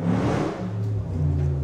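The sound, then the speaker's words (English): A Nissan Hardbody truck engine revs loudly, a deep rumbling drone with rising pitch as it passes, steady and continuous without any voices. “There goes Casey's truck.”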